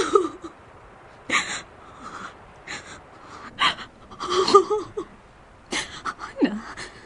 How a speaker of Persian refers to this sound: نه دیگه گریه نکن، به خودم قول دادم هر چی که بیش اومد گریه نکنم.